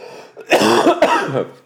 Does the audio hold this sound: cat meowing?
no